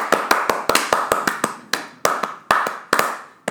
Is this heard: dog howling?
no